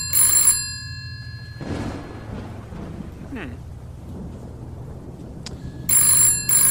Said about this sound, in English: So you start to leave the room, and the phone rings.